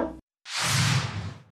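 animal, dog barking

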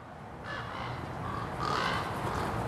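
bird, ravens cawing

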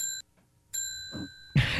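signal or alarm, bell ringing

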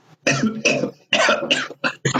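human body sound, coughing

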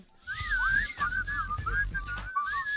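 human body sound, person whistling

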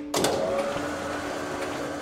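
machine, printer running

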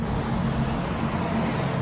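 vehicle, car driving off

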